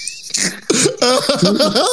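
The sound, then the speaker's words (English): A loud run of rough coughing bursts, one after another with barely a pause, mixed with strained, voiced wheezing sounds over about two seconds. “She finna go get you a cough drop.”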